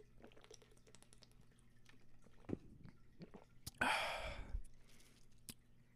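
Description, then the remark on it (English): Someone drinking water: soft gulps and small wet clicks, followed by a loud, breathy exhale of relief. No one speaks. “Man, I need water.”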